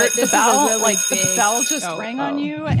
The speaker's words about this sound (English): The bell just rang on you.